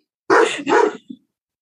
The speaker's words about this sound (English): Sorry, the dog is barking at random people walking by. That's okay. I can edit.